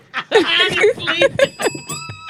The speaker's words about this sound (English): Bitch, you ain't about to keep fucking with that bell. Give me the bell. I love this bell. Give me the bell.